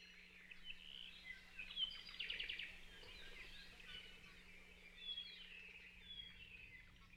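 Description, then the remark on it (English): Hawaiian forest birds singing softly in a high-elevation ohia forest, overlapping high chirps and a quick rapid trill, layered continuously over a faint steady low hum with no voices. “Because of this, their song can now only be heard in high elevation ohia forests where it's too cold for mosquitoes to live, and we're in a race against time to save these birds before mosquitoes invade these areas as well.”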